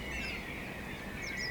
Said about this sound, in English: It's predominantly a blackbird. Oh. As part of the dawn chorus. Possibly a robin in the background. Oh. And some traffic. I noticed the traffic.